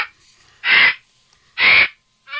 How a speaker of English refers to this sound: That is a vulture. And of course, it's a scavenging bird of prey. They can live up to 60 years, and they weigh about 26 pounds.